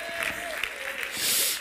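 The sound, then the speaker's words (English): A crowd claps their hands together, a dense patter of applause that swells louder toward the end, with a faint voice underneath. The audience claps in answer to a call to clap if they love God. “Oh, clap your hands if you love God tonight.”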